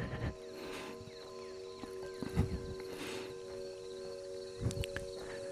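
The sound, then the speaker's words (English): Sneaker footsteps scuff along pavement during a stroll in a few slow, uneven steps, soft, over a steady background hum and faint insect buzz. “If not, you just hear this footsteps, the sneakers upon the pavement.”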